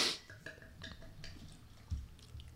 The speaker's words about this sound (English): Get the lager, right? Yeah, it's probably smart. So my beer. Wow, we'll start pouring.